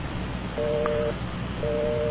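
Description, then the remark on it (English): A telephone busy signal because the called party is using his phone: two steady half-second tone bursts separated by a pause, a low buzzy dual tone heard over hissy, band-limited phone-line noise. No one speaks. “busy line”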